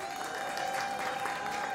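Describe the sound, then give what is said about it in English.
An audience claps together in a steady, dense round of applause, answering a question about who showers both morning and night. It is a continuous wash of many hands with no talking over it, holding an even loudness throughout. “And by round of applause, I don't know why I'm doing this, but who showers both day and night?”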